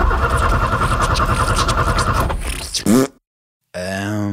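A truck engine cranks with a loud, rapid chugging rhythm for a couple of seconds, sputters, and dies into silence because the truck has no power. A sustained droning tone follows.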